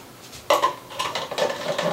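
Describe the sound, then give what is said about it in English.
A film developing tank being agitated for about 10 seconds after stop bath is poured in, with steady clattering and rattling that starts abruptly and continues in quick repeated knocks, no voices. “Okay, so pour in the stop, and then we have to agitate for 10 seconds.”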